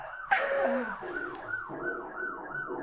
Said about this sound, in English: Hey, sirens, though. Goodness.